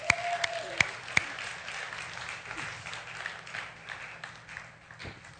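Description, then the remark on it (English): An audience applauds steadily for several seconds as a couple is called forward, a dense wash of overlapping claps with a few sharper individual claps standing out near the start, tapering slightly toward the end. “And the clapping's really helped.”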